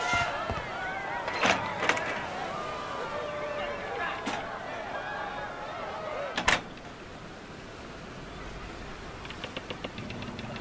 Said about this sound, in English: The crowd cheered again as Blunderbusted left the stage one by one by way of the trap door in the quarterdeck floor.